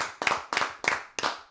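hand clapping

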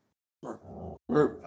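dog barking

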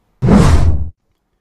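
whoosh transition sound effect

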